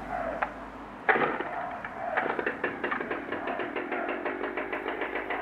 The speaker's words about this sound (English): Okay, I'd best get the chainsaw fired up.